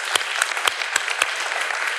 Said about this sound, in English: And before we do, can we just have one more round of applause for the Hibbses? That was just wonderful stuff today. Thank you, guys.